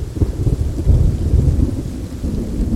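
Deep, rolling thunder rumbles continuously through a steady rainstorm, the low booming heavy while a softer hiss of rain fills the background. No voices.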